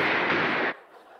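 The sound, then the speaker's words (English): A loud burst of rapid gunshots, fired at someone's feet, blurs into a dense, crackling roar for under a second, then cuts off sharply and leaves a faint, fading tail. No one speaks. “And for the record, shooting them in the legs does not make it any better.”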